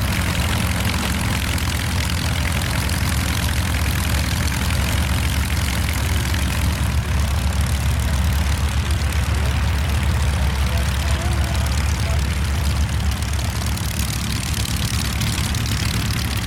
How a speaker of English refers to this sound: Behind him, a Moth Minor. And to my left is a Beech Stagger-Wing and a Stinson Reliant. All of these 6 engines are on, all of these aircraft are about to taxi up for the demonstrations, and all of these aircraft look and sound great.